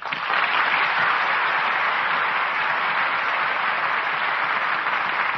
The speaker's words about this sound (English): And that applause will assure you both how much we enjoyed tonight's performance.